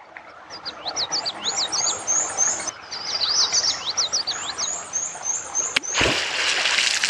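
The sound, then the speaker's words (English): Near the end, a sharp, loud beaver tail smack hits the water once at a beaver dam, followed by a brief wash of splashing, while busy birdsong chirps and trills continuously in the background. “That tail smack lets other beavers in the area know that we're here and potentially dangerous.”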